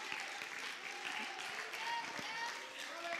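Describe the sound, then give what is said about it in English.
An audience claps and cheers in praise of the Lord in sustained, dense applause, a broad wash of many hands with voices calling out underneath, steady and fairly loud throughout. “Oh, somebody give the Lord a mighty hand clap of praise.”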